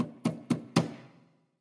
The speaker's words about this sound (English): was in bed when he heard a tremendous banging on the door.